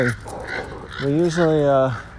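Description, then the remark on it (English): A person imitates a crow's caw: a short, nasal call, then a longer drawn-out 'caaaw' with a wavering pitch. Both are loud, with no real bird sound behind them. “My dog just tried to attack a crow, and as the crow was flying away from my dog, a more aggressive, smaller bird was attacking the crow.”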